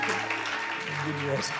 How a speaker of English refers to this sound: And last Sunday you did very well. Let's give a big hand clap to her again.